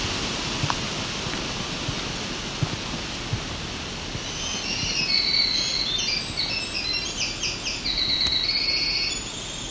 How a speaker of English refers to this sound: Winter wren, black-throated green warbler, right there. Another bird. It's nice and loud.